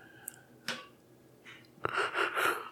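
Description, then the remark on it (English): A breathy yawn: a few short sharp inhalations, then a drawn-out airy exhale with a faint voiced hum that swells and fades over about a second. “Yawn. Sorry. Very tired.”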